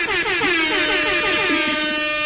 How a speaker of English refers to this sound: You're getting me excited. I think I need to give you an air horn for that.